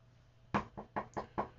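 A series of about six sharp knocks on a door, loud and close, coming in a quick, steady rhythm after a brief quiet moment, with no voices.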